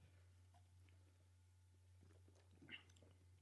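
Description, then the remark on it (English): Soft mouth noises of people taking quick sips of beer to compare tastes, small slurps and swallows scattered over a few seconds above a steady low hum, with no talking. “All right, everyone take a quick sip. See if they taste the same.”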